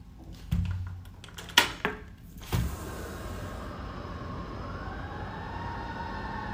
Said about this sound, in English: Let those sirens alert you to the fact that this is real.